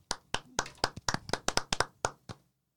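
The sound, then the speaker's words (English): A short burst of hand clapping, about a dozen sharp claps in a quick, slightly uneven rhythm that slows and stops after a couple of seconds. “Can we get some claps?”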